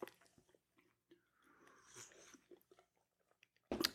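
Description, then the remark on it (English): Someone takes a quiet sip of a drink, with soft slurping and swallowing sounds in near silence, followed by a sudden louder burst of noise at the very end. “One more sip and we'll keep on going.”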